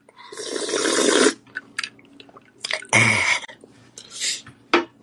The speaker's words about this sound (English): Feel free to weigh in, give me comments, give me questions, or you can sit there and continue to listen to me sip on a lovely vodka tonic.